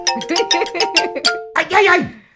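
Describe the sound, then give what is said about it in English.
A bell rings in a quick, uneven flurry of about eight strikes, each adding a bright metallic clang over a sustained ringing tone, followed by a brief loud vocal-like burst that fades. “Ring the bell.”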